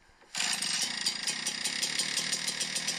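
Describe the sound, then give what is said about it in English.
A gas-powered leaf blower of the kind used by landscaping crews roars to life after a brief quiet moment, then runs loud and steady with a rapid, rattling engine pulse and a harsh hiss of rushing air. “As winter will soon turn to spring, this is the sound that'll be in the air, either personally or a number of them at once from your landscaping crew.”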